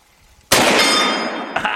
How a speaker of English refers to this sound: I'm going to shoot just a couple of the hard steel plates over there if I can hit them.